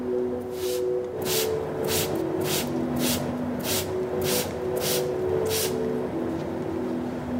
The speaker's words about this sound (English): In this particular case, we use a water spray.